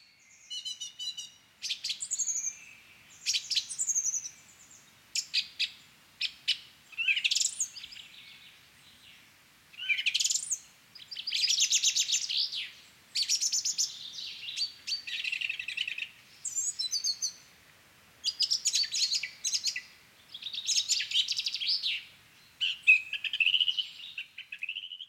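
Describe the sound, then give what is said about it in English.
A song thrush sings loud phrases of bright whistles and chirps, each phrase repeated several times with short pauses, while a chaffinch sings faintly at the same time. “But song thrush is amazing because it is kind of this, like, not mimic, but it will pick a phrase, so it will pick a noise, and it'll test it”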